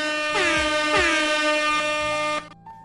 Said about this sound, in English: Shouts out to Canada. They deserve some air horns.